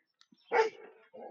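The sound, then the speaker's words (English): A single bark from a female dog rings out, trailing into a brief yelping whine before a short second vocalization, with a couple of faint clicks just before. “It looks like it's a female. Una hembra. In Spanish, you call a female dog.”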